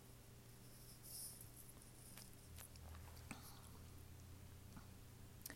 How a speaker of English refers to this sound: But this is my favorite section, and I'm gonna take another sip of water before I start reading it to you.